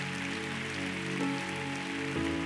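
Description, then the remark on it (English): A crowd claps steadily in a dense, crackling wash of applause during a religious service, with sustained keyboard or organ tones humming underneath throughout. “And I think he deserves a big hand clap.”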